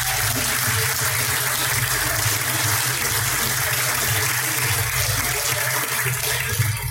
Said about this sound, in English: Okay, in fourth place, put your hands together for that latte drinking man, Liquor Pigs Barbecue.